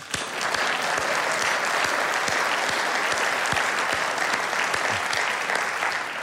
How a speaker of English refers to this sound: Please join me in giving you all a big round of applause.